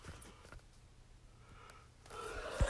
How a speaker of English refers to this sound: I'm sorry. I'm out of it. Oh, here comes another yawn.